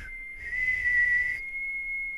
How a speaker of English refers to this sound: I can only hit like one note. Yeah. Like, you know, when people are like, whistle, whistle, whistle, whistle, whistle, whistle, whistle, whistle, da, da, da, da, like they're doing scales, it's like off. Oh, yeah, I can do it. I can do.